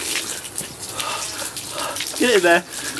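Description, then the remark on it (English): Tap water runs steadily through a hose into a condom stretched over a person's head, a continuous rushing hiss throughout, with a short voiced exclamation rising over it near the end. “Is people putting condoms on their head and filling them with water.”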